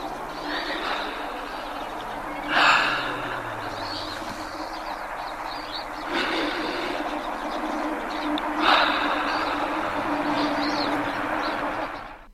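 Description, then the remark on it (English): Slow, airy breaths, roughly three of them a few seconds apart, rise out of a steady hissing, rumbling background noise. There is no talking. “And now, the sound of breathing.”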